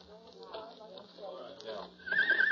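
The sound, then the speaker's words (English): A horse at a corral neighs loudly near the end, a shrill wavering whinny rising over a murmur of voices talking in the background. “Which way is it to the place where they keep the horses?”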